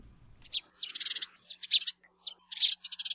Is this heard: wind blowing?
no